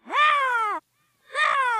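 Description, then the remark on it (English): A person voices two loud, drawn-out crow-like caws, the first slightly longer, separated by a brief silent pause. “So we hear fly, bird, caw, caw.”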